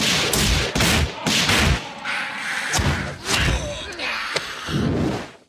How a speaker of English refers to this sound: he gets a few shots off. Those gunshots sound really flat and pathetic.